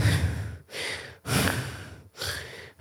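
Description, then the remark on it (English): A voice imitates slow, heavy sleeping breaths, four airy inhales and exhales in a steady rhythm, fairly loud, with no talking. “Breathing. How somebody sleeps.”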